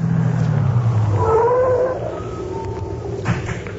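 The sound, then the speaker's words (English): A car with its lights turned off drives up: the engine rumbles low and steady, its pitch rising as it rolls in, then the sound drops to a quieter idle after about two seconds. No one speaks. “It is heading this way.”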